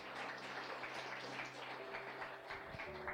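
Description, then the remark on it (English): An audience claps together as a clap offering to the Lord, a dense, continuous wash of applause that stays loud and steady throughout, with a low sustained instrumental tone humming underneath. “Let's give the Lord the loudest clap offering that we can give Him today.”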